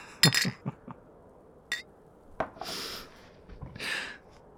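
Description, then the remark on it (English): Glasses clink together in a toast: a bright, ringing chink near the start, followed by a few light knocks and then soft breathy exhales, all quiet with no talking. “To not wanting to go home. Cheers. Cheers.”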